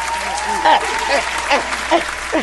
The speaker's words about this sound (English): Y'all clap it up for